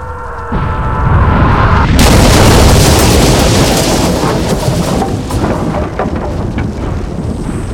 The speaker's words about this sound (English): But before he could finish, there was an earth-shattering bang!